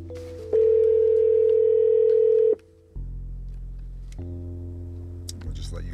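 A phone line tone sounds as an outgoing call connects: one loud, steady electronic tone lasting about two seconds, followed by a lower, fainter humming line sound with no talking.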